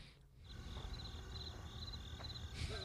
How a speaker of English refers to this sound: I'm just going to put some cricket noise over that.